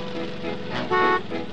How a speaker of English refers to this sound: He honks up the horn and honks twice. The horn. Very intentionally.